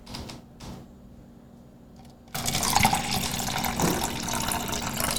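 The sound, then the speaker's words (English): After a quiet moment with a few faint clicks, someone pours a drink for themselves into a glass, a steady, fairly loud splashing stream that carries on to the end. “So let me pour myself up before we get into this one.”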